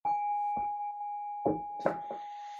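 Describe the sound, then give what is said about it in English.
A meditation bell rings with a steady, sustained tone that hums through the whole moment, while a few soft knocks and rustles sound. “You have to have another bell for that one.”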